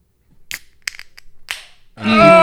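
A beer being opened on microphone at the start of the show Danger Junior Writer's Room: several sharp, separate clicks and snaps of the cap or tab, then a sudden loud rush of fizzing hiss that continues to the end.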